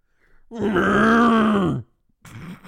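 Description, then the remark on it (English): A person imitates a cow with one long, low, droning moo that holds steady for over a second before dropping off, followed by a brief burst of softer breathy noise. “Is that a moose? It's a cow.”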